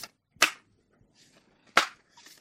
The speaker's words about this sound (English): Okay. I'm still shuffling my cards.